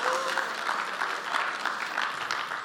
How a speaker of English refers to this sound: By the way, this is the ultra vest that I wore during the Kurt Climbs fundraiser. So let's give this vest a round of applause.